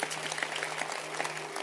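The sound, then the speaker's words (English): An audience claps together in a dense, steady patter of many hands, a continuous crackle of overlapping claps with a low steady hum beneath, no voices standing out. “Can you clap your hands if you haven't?”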